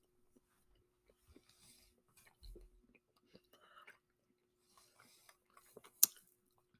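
Quiet, irregular crunching and mouth clicks as someone chews a chocolate sea salt snack with salty, semi-sweet chocolate chips, with soft wet smacks and one sharper crackle near the end, and no talking.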